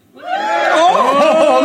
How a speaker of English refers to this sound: This is a big draw. 300 people in here to see you, so you can go to see him at the gig you're doing with him now. Tell him. And say three times more people wanted to see me than you. Big cheer if you're here to see Tom Parry.